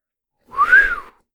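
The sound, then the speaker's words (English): A single short whistled note from a soldier walking into a gym, rising then gently falling in pitch, clear, lasting under a second with no talking. “The soldier whistles as they walk into the gym.”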